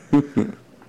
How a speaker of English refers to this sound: Bless you.